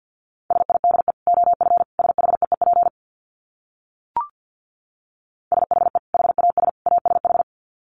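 Fast Morse code at about 50 words per minute: a steady mid-pitched tone keyed into rapid dits and dahs in two bursts, separated by a pause with a single soft click.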